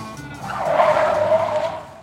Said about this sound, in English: Detective Gopher and Detective Blue zoom to the farm in the Gopher-mobile.